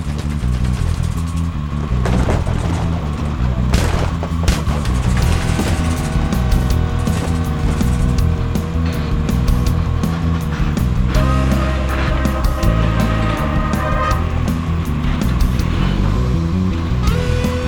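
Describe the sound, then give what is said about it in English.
A ramjet air cycle, its ramjets leaned forward, streaks across a bay with a loud, steady engine roar. Layered whining tones rise and shift in pitch over a deep rumbling drone, with no voices. “GOB leaned the ramjets forward and streaked across the bay as interceptor drones boiled out of Washington Hall like hornets.”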